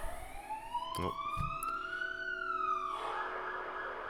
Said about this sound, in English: Can you hear that? It's a siren going past. Just ignore that for a bit.